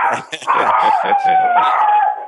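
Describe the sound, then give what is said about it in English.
Several dogs bark in a quick burst, then break into a loud, sustained howl with wavering pitch, filling the whole moment. “We got some dogs on the show today.”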